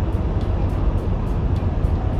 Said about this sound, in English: I'm in the car right now. I had to go pick some stuff up. I'm driving back to my new home outside San Antonio.